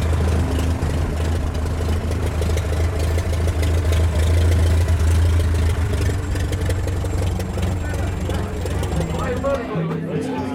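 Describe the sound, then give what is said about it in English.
An antique propeller aeroplane's engine idles with a loud, steady low rumble and a throbbing harmonic drone that holds unbroken for about ten seconds before easing slightly at the end, at the aerodrome of Echuca, Australia, under scattered cloud, at an Antique Aeroplane Association of Australia weekend gathering. “They come from all eras, in many colours, and with their own distinct sounds.”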